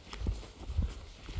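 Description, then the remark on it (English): Dull, heavy hoof thuds from wild horses moving over soft ground on wetlands, three or so muffled steps at an unhurried pace, with faint outdoor background noise. “There are some wild horses on the wetlands that I think keep a lot of the, and one will get the grasses down for one, I suppose.”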